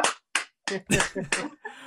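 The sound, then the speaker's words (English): A series of sharp hand slaps, about six in an uneven rhythm, fairly loud, made to imitate a loud banging like a headboard slapping against a wall. “Sorry, there's a real loud banging going on. Yeah. It sounds like a headboard slapping like the wall.”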